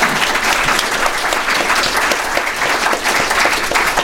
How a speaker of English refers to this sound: And I want to hear one more round of applause for our tremendous guest, Jerry Cohen.